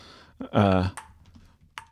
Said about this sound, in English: He was typing.